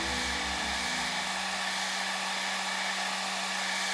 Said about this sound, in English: As he was doing this, he was startled to hear the sound of a blow dryer coming from another area of the home.